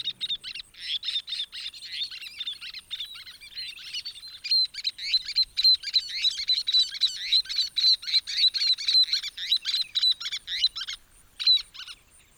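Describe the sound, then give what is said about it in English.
Rapid, high-pitched chattering calls of least terns, small gull-like birds, repeated insistently and overlapping, steady for about twelve seconds with no other sounds. “That's a lease tern.”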